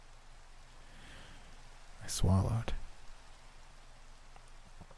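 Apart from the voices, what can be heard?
rain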